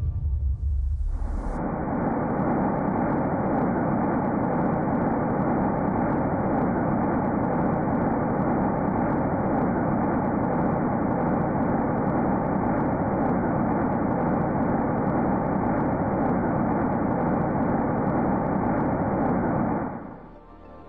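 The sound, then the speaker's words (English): A sonification of the sound waves of the early universe, from a time before stars or galaxies when everything was a hot, bright soup of thick plasma: a steady, dense roar of rumbling noise that holds at an even loudness for about twenty seconds, then fades, with no voices. “The first of the five audio clips we will listen to reveals the sound waves of the early universe, a time before stars or galaxies, when everything was just a hot, bright soup of thick plasma.”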